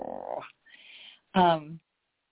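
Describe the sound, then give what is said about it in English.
A person makes a short, gravelly growl, followed by a breathy pause and a louder voiced grunt that drops in pitch, all over in about two seconds. “Did you hear me kind of growl?”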